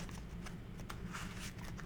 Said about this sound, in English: All right, well, what you should be hearing, and hopefully the people at home are hearing, is the sound of shuffling cards that are sleeved.